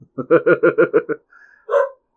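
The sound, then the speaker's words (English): A quick burst of six sharp, evenly spaced dog barks, loud, followed by a brief thin whine and one final higher yelp. No one speaks. “Okay, so now that we are done listening to the dog bark.”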